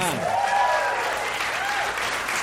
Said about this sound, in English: Thank you. Round of applause for annoyance.